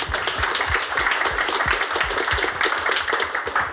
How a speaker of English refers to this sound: I think a round of applause for Ronnie.